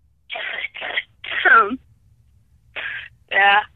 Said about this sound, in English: It's a beginner's mistake. You're just doing the coughing. What you need to do is you need to do the voice.